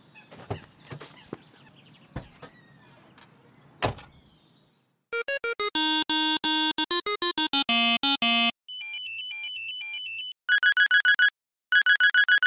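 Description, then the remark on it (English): After a few seconds of scattered clattering and thumps, loud electronic ringtones for a new cell phone play one after another as someone tries them out: a quick beeping melody, then a warbling trill, then rapid pulsed tones. “I was trying to decide what ringtone would be most annoying to use on my new cell phone”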